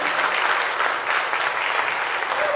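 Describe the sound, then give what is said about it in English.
An audience claps steadily to give praise to God, a dense wash of many hands with no gaps, loud and even throughout the few seconds, with no voices rising above it. “Give God praise.”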